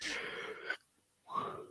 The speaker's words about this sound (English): Oh, sorry. Yawning away.